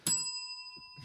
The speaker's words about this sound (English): What is the bell for? That's what she said. It's instead of that's what she said, we ring the bell